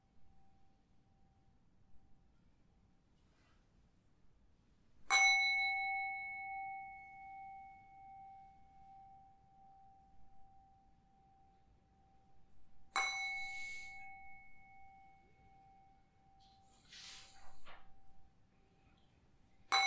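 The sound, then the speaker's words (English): A meditation bell is struck three times, several seconds apart, to end a meditation session, each strike leaving a long, pure ringing tone that slowly fades; the last strike is softer, and it is otherwise quiet. “So I will ring the bell 3 times, then you can come out from your meditation.”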